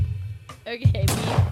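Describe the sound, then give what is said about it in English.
A sharp, noisy gunshot-style burst hits about two-thirds of the way in and rings out into a hissy decay, preceded by brief voice-like tones over a steady low rumble. “There's your gunshots.”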